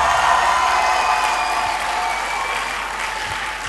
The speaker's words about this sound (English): Do you want to give Jesus a clap of praise here?